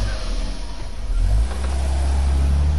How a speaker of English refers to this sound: This is what driving with an out-of-tune engine feels like. Keep your engine running smooth.